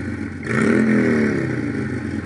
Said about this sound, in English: Motorcycle. Motorcycle. Selected.